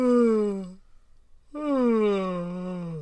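A voiced yawn, done as part of a vocal warm-up, sweeps downward in pitch, breaks off briefly, then resumes as a second long, sliding yawning groan, fairly loud with no other sounds around it.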